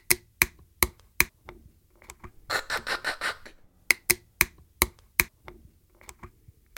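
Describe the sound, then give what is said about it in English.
The plastic cap of a water bottle clicking open: a series of sharp, evenly spaced ticks from its tines, broken midway by a brief rough scraping twist, then more crisp clicks. No one speaks. “There are tines that actually go tick, tick, tick, tick, tick, and pop open as you're opening that bottle.”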